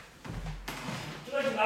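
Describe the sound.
A single heavy thud as a cat knocks a tile off and it hits the floor, with a brief low rumble just before and a voice starting up right after.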